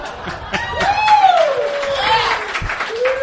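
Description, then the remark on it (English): An audience claps steadily for a few seconds, the dense patter of many hands joined by a long rising and falling whoop or whistle of cheering over the top. “I was kind of expecting applause.”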